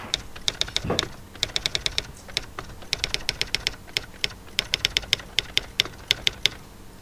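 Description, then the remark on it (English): Rapid typewriter keystrokes clatter in uneven bursts, crisp, with brief pauses between flurries and no voices. “So what have you printed off of your typewriter today”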